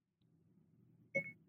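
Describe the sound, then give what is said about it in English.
A Siri voice assistant activation chime on a phone after saying "hey, Siri": a brief, bright two-note electronic tone, fairly loud, ringing out over a low, steady background hum. “Here pops up Siri.”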